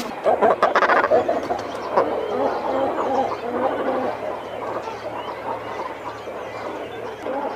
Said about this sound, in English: Tweet of the Week this week is two birds, the shag and cormorant.